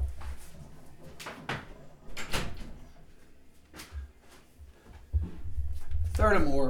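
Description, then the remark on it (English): Handling noises as the speaker gets up and closes a door: a few sharp knocks and scrapes, then a rising squeak near the end as the door is pulled shut and latched. Low rumbling movement sits underneath. “And furthermore, as I get up and close my door real quick.”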